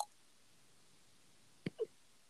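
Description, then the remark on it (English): Shiloh, a puppy about two months old, gives a tiny squeak: a quick soft pop followed right after by a short, thin chirp, both faint against an otherwise quiet background with no talking. “Oh, he squeaked.”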